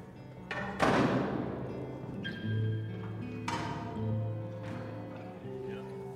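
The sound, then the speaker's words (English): Heavy thumps and clanks on hollow metal as people climb through a side door into an empty metal grain bin with a stirring system, each impact followed by a resonant metallic ringing that hangs in the enclosed space, with faint voices in the background. “So we're going to open the door in the side of this and walk. We can all climb in.”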